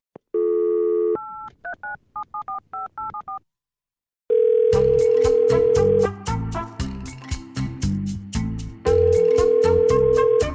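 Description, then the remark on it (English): A steady telephone dial tone, then a quick run of keypad beeps as a phone call is placed to the White House. After a short pause, long ringing tones sound twice over busy, rhythmic background music. “But first, I need to make a phone call.”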